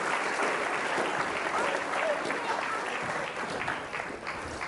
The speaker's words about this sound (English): Give them a big round of applause for helping us. Well done.